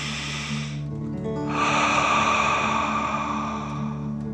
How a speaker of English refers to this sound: let's start by taking 3 deep dragon breaths. Breathe in through your nose, filling up your chest and belly, and then out through your mouth, pretending you are breathing fire. Ready? Okay. Deep breath in and out.